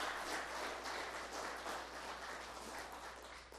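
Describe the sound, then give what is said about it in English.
A church audience bursts into steady, dense applause for the volunteers of its Vacation Bible School, many hands clapping together in a sustained wash of sound that holds level throughout before easing slightly at the end. “Can we give them a round of applause for serving the Lord that way?”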